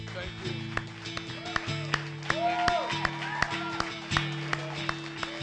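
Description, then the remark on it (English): A church audience claps together in a steady, evenly spaced rhythm to honor military service members, the sharp claps ringing out over sustained organ-like musical tones and a low murmur of voices. “Would you stand up, please, and can we just give you a hand clap?”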